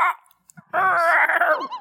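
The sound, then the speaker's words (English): A voice imitates the call of a pigeon called the damned one: a brief opening sound, then a loud, sustained, wavering warble lasting about a second that dips in pitch as it fades out. “one of your pigeons. I believe it was the damned one. The damned one goes...”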